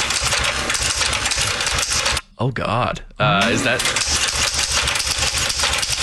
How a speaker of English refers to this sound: That's a typewriter.